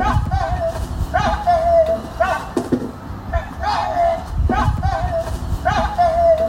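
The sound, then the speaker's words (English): A neighbour's dog barks over and over in a steady rhythm, roughly once a second, set off by a plane going overhead, sounding a little muffled over a low background rumble. “Anyway, we managed to capture it. This is the actual dog.”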